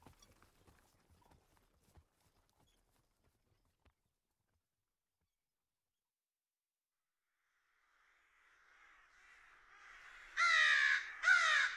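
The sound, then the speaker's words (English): Faint fluttering and scattered taps give way to a quiet stretch, then a rising rush of many crows' flapping wings and two loud, harsh crow caws at the very end. “Flapping wings. Murder. Crows. Cawing. So many birds' wings flying.”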